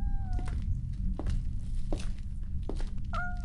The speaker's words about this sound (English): Box of kittens, it is.